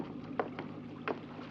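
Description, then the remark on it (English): A boat moving through water, with a steady rushing wash and three short splashing bursts from paddles or the hull cutting through the surface, with no voices. “made, yeah, very good time in this boat.”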